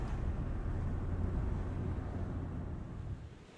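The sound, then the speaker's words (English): Ocean waves wash against the shore in a steady, rushing roar, a continuous deep wash of noise with no distinct breaks and no voices. “At least I got to the ocean before the next terrible thing happens.”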